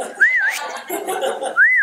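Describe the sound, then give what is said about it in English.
A person whistles a short, warbling family call used to find each other, in two rising-and-falling phrases separated by a brief pause, clear over a soft murmur of background noise. “We got a whistle.”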